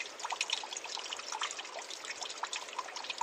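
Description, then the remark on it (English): Water trickles steadily into a small pool of cool water in a creek by big boulders on a warm fall day, a soft continuous babble of tiny splashes and bubbling, fairly quiet, with no voices. “A small trickling pool with cool water.”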